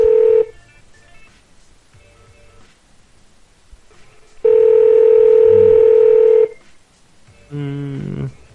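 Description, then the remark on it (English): A Google Voice telephone call tone sounds in steady bursts: a short steady tone, a long two-second tone after a pause, then a warbling ringing tone at the end, with no talking. “One ringy dingy. Two ringy ding. Three ring ding. Four ring.”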